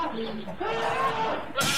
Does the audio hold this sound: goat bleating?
yes